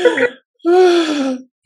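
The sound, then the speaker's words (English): A sleeping female French bulldog gives a short snorting grunt, then after a brief pause a longer, louder groaning grunt with a raspy tone and slowly falling pitch. No talking is heard. “Everybody knows Frenchies snore. That's like their thing. They snore a lot. But that's not even a snore.”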